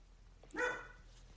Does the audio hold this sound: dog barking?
yes